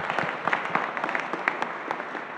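A crowd applauds steadily, many hands clapping in a dense, crackling wash with sharper individual claps popping out, sustained at an even moderate level throughout.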